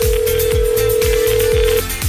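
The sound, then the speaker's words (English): A single long, steady ringback tone sounds on an outgoing surprise birthday phone call placed by KLRC Radio hosts, lasting almost two seconds and playing over a rhythmic background music bed with thumping beats. “And let's make a little surprise phone call.”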